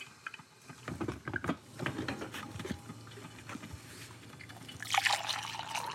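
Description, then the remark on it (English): Coffee trickles and splashes into a cup, a steady dribbling pour with a few clinks and a brighter, higher gurgle near the end as the cup fills. “Now, while I drink this cup of coffee, here's the show.”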